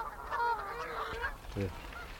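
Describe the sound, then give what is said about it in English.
Canada geese honking on pools in a noisy overlapping chorus, with harsh repeated calls layered over each other and a brief low call near the end. “Yeah, they're covered in Canada geese.”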